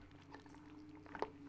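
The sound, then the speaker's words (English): A quiet sip of coffee, soft wet mouth sounds ending in a brief swallow, over a steady low background hum with no talking. “Sorry, one more sip of coffee.”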